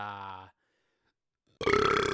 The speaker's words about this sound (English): Oh, that was a good burp. Oh, I needed that. I just had like 2 sandwiches.